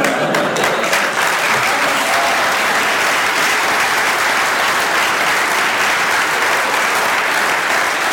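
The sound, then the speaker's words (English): A large crowd cheers and applauds loudly and steadily, a dense wash of clapping and shouting that holds at full volume throughout without a break or any clear speech. “Heard that cheer.”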